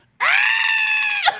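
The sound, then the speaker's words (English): A young woman, recording an audition video at home with a motorcycle helmet on her head, lets out one loud, sustained high-pitched scream lasting about a second, ending with a sharp upward squeal, her voice imitating a little robot's electronic shriek. “You love screaming.”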